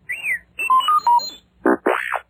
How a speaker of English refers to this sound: You will know it is time to turn the page when you hear R2-D2 beep like this.